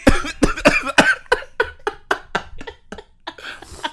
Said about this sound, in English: Oh, because I'm choking.